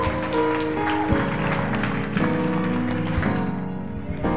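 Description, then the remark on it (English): An audience applauds God during a morning church service after members share testimonies, in a steady, dense wash of clapping, with sustained musical tones running underneath throughout. “Oh, I think you should give God a better hand clap this morning for all the testimonies that our people have shared.”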